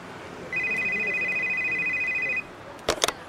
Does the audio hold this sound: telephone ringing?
yes